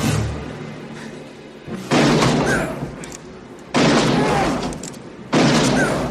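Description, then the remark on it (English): Three loud gunshots ring out one at a time, roughly two seconds apart, each a sharp blast followed by a long, fading echo, as a kid shoots a man three times in a film scene. “Mike is reaching for his gun, and the kid shoots him 3 times.”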